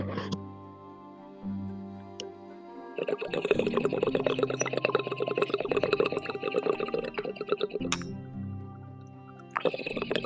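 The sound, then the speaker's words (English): Water bubbling in a dab rig as a dab of wax is taken: a steady gurgling burble runs for several seconds, pauses briefly, then starts again, with a low tonal hum in the quieter gaps. “We are ready for the dab, guys.”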